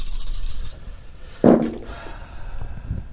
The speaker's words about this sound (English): So I am rolling 10 dice.